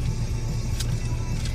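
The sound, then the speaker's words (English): A car's low, steady rumble fills the moment, constant, with faint brief hisses on top and no one speaking. “There's another car thing, is it?”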